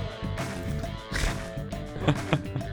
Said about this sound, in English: Oh, there's that vibra slap.